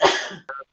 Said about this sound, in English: All right. Now, bless you.